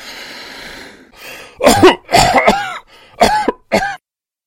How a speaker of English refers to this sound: A man was lying in the infirmary bed once more. The defense professor breathed, then made a retching coughing sound.